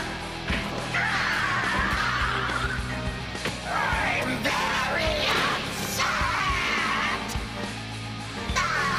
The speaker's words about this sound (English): This dude's screams are like perfectly pitched to be singing like ….